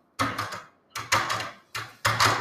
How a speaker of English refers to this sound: What was that? What was what, madame? That click just now. In my own telephone. As though someone had lifted the receiver off the hook. Off the extension telephone downstairs.